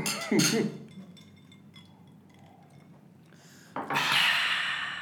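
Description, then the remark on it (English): After a toast, a sharp breathy intake and a faint glass clink, then quiet sipping, ending in a long, loud exhale after the drink. “when I drank it, I had to breathe in again to exhale”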